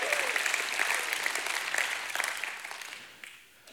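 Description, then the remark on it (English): A crowd claps steadily in dense, continuous applause, giving God a hand clap, with scattered shouts of praise and cheers mixed in, loud at first and gradually tapering off toward the end. “Someone give God a hand clap and a shout of praise.”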